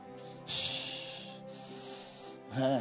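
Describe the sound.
A man imitates someone hissing and breathing hard as though with peppermint in his mouth: two long, loud, airy hisses in a row, then a short voiced, snorting breath at the end.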